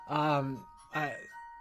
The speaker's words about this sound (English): I believe that is the latest ringtone on the phone that's going off. That's right.